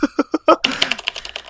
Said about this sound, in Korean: 아, 이 키보드 소리는 스펙터 X360 소리고요.